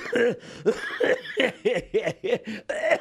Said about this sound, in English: Now, why are you laughing and coughing?